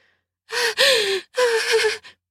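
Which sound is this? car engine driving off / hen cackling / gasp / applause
gasp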